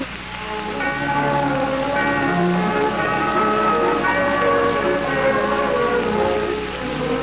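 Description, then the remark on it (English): A clock bell strikes ten o'clock, its ringing strikes following one another in an even rhythm, with rich overlapping tones that sustain and blend. It is fairly loud, with no talking. “It is 10 o'clock and pitch dark.”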